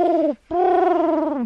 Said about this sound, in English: That's a pigeon.